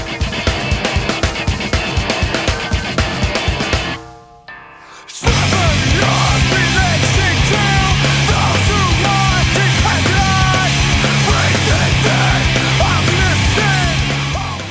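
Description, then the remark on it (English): A loud hardcore rock track, the opening track of an album, kicks off with pounding, rapid drums in a late-1990s/early-2000s East Coast hardcore drum sound, cuts out briefly, then crashes back in with dense distorted guitars and driving drums at full volume. “That first track, it opens with that late 90s, early 2000s East Coast drum sound thing, the hardcore drum sound thing”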